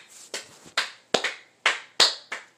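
A handful of sharp hand claps in a loose, uneven rhythm, about six or seven in under three seconds, applauding the host's little brother as he finishes talking. No one speaks.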